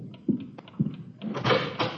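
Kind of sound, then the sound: household object, door being opened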